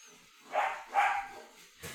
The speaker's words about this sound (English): Oh, my God. And I think the dogs have just killed themselves. Just heard a massive bang through the dog door.